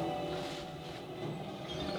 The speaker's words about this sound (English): I guess the tram does stop for something.